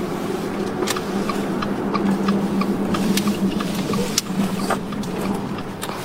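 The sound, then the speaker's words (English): A car rolls along slowly looking for a place to park, then stops in an empty yard near a Georgian-style mansion, with a steady, low engine hum and road rumble, broken by scattered light clicks and ticks. “His car stops in an empty yard and a Georgian-style home can be seen from a distance.”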